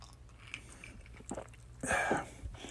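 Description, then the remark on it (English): Someone takes a sip of a drink: soft wet mouth noises, then a brief louder slurp and swallow near the end, with no talking. “It's Friday night. I got to take a sip.”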